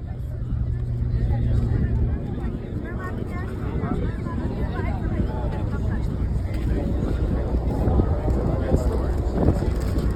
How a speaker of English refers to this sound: After dinner was really the highlight of day one, where we all went with Burlap on the Harbor Lights cruise. Oh, it was a beautiful sunset boat ride all around New York City and an up close and personal pass right by Lady Liberty.